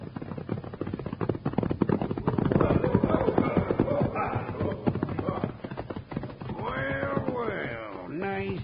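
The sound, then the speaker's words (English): Horse hooves clip-clop in a quick, steady rhythm, loud as a rider rides up, followed near the end by a brief rising and falling high-pitched cry. “He's going to ride right up to us, Bill.”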